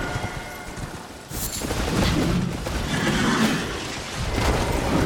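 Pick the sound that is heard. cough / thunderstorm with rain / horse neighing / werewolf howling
horse neighing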